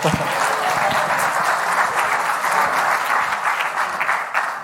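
Sustained audience applause one morning as a guest is called up to bring God's word, a dense steady wash of many hands clapping at an even loudness throughout, with no one speaking over it.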